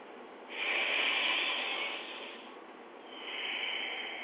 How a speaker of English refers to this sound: And when you breathe so deep that your chest, your diaphragm expands, can you see this?